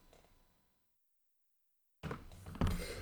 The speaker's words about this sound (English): and now I have to sneeze. Excuse me.